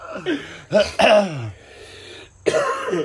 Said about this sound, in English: This is going to be a lot of coughing. Yeah. This is what happens when we record these at night.